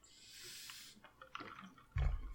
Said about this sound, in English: You might catch me getting a drink from my water bottle like this.